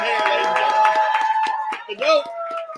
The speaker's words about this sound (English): Folks, let's all give Jacoby Jones a huge round of applause. Thank you so much.